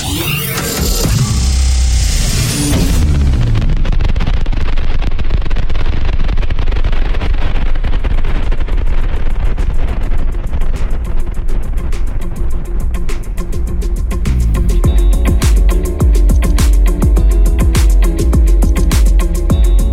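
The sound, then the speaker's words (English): A deep, sustained roar of rocket engines at launch, loud, with a crackling rumble that swells after a bright burst and keeps thundering without pause. “4, 3, 2, 1, 0. All engine running.”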